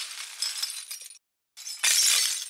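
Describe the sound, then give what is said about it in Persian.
Broken glass shards from candy jars scraping and tinkling as they're swept up with a dustpan and broom, a brief pause, then a louder clattering rush of the glass pieces emptied into a trash bin. Crisp, no voices. “با خاکنداز و جارو خرده شیشه های گوی آب نبات ها را جمع و آنها را توی سطل آشغال خالی کرد.”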